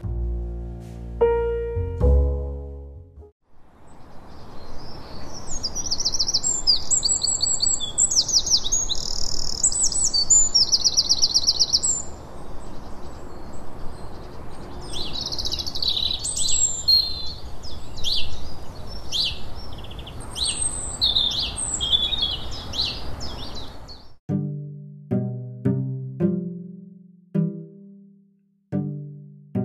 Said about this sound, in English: It sounded to me like quite a recognisable bird song. It's just, I just don't have the training.